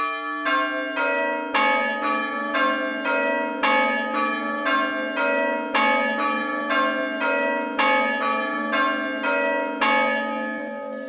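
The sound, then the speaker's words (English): Four church bells of bell metal (77% copper, 23% tin), weighing about 4, 5, 5.5 and 7.5 hundredweight, ring out in a steady, overlapping sequence of rich metallic strikes, each hum lingering beneath the next, fairly loud with no voices. “And the weights are given as approximately 4, 5, 5.5, and 7.5 hundredweights. And bell metal consists of 77% copper and 23% tin.”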